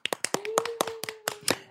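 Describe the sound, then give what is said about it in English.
A quick, steady run of about ten sharp hand claps, fairly loud, with a faint sustained tone humming underneath most of the way through. “Claps.”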